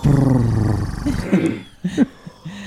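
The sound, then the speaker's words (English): A person imitates a cat's purr, making a low, rumbling purr-like growl with their voice for about a second, followed by a few short, quieter vocal sounds. “Can anyone do a purr?”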